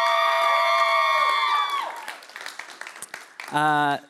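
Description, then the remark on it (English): A held musical chord fades into a church audience at Awakening Church cheering and scattered clapping, ending with one loud, sustained high-pitched whoop or shout. “I got ringers in the crowd.”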